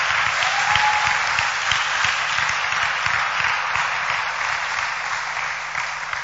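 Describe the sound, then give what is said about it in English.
An audience, standing at the preacher's call, claps hands in a dense, sustained wash of applause, steady and fairly loud throughout, with a low rhythmic thumping underneath and no clear speech. “Stand to your feet. Clap your hands.”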